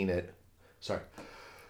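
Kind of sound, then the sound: human body sound, sneeze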